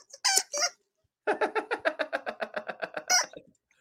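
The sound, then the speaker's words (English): A dog squeezes her squeaky toy over and over: two drawn-out squeaks, a short pause, then a rapid run of about a dozen quick, rhythmic squeaks, loud with no talking. “My dog wants to right now. She's squeaking her toy.”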